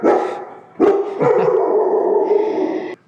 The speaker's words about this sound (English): As you know, with the dogs barking in the background, I don't have editors. I do it all on my own. So excuse when the dog barks.